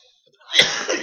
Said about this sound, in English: Excuse me. Sorry, I'm still getting over a cold, so I have a cough.